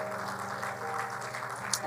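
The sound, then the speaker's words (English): A church audience at a morning service claps their hands in praise to the Lord in a steady, dense patter of many overlapping claps, with a low sustained tone humming beneath and one sharper clap standing out near the end. “That was kind of a good Baptist hand clap of praise.”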